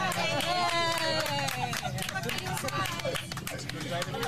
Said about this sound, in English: You got the video of when she got back on the plane? Yeah, this is everyone cheering and somebody takes a little dig. Another passenger takes a dig at her at the end.